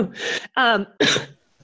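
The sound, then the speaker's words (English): Three quick, harsh coughs in close succession, fairly loud, the middle one strained and throaty, after something went down the wrong way, with no one talking. “So I know when you and I were talking earlier, so I have to cough.”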